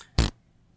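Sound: voice imitating a fart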